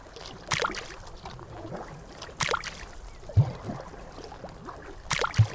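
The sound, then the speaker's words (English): Slow, rhythmic paddle strokes as a dockhand paddles a small boat out toward a circle of boats, each a soft splash and swirl spaced a couple of seconds apart, with gentle low knocks against the hull. “The dockhand then paddled his boat out and began slowly making his way over to the circle of boats.”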